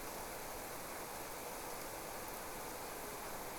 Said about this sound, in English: you can't even see through it. It's so heavy, but it's warm, so it's a very nice kind of rain. Everything just get drenched within minutes of this heavy torrential rain. You can see little rivers starting to form in the puddles.